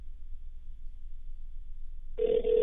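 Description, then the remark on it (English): A low, steady hum fills most of the moment before a telephone ringback tone starts near the end, a thin, tinny steady ring coming through a phone line, fairly loud, on an outgoing call to the owner of Tavern at the Park. “If I can get him on the phone, it will be.”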